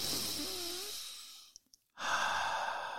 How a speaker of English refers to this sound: And we compensate for that by, guess what? Breathing.